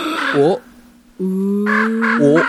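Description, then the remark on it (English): A person imitates a crow with harsh, nasal caws: one call, a short pause, then three more close together over a steady droning hum, all loud. “practice their bird voices.”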